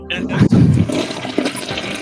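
A toilet flushes with a loud, rushing gurgle of water that swirls and drains over about two seconds, clear with no talking.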